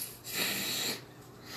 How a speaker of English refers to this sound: As you can hear that lovely sound of me spraying my nose.